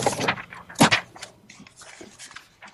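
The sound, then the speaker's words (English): Paper notes, written on the back of a packet, rustle and crinkle in a few quick, noisy bursts, loudest near the start and then trailing into softer shuffling handling sounds, with no one speaking. “as you guys can hear, Beverly Hills is kicking it old school with the actual paper notes”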